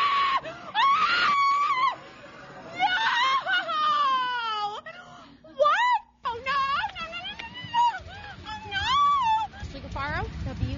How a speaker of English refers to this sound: All right, and now here's her screaming. Listen.